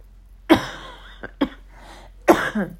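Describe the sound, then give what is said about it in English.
A person coughs several times: a strong hacking cough, a couple of smaller follow-up bursts, then another forceful cough, with no talking. “Excuse me, I will be so happy when this cough is gone.”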